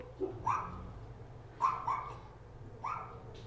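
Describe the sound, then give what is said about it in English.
A neighbor's dog barks in three short clusters of one or two yaps each, moderately loud over a low, steady background hum, with no talking. “Our neighbor's dog is a big Gotham City Sirens fan.”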